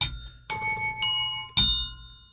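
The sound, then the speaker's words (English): A bell chimes a short tune of four bright, ringing notes about half a second apart, each strike lingering into the next, clear and with no voices; the bell is tuned up to start the Stump the DJs game on radio station Z104. “And you know what tuning up the bell means?”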